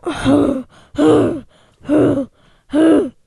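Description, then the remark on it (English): A voice imitates a pulsing hum coming from beyond a door: four loud, evenly spaced "ooh" tones, each about half a second long, with short silent gaps between them in a steady rhythm. “And it's like this pulsing humming, like, ooh.”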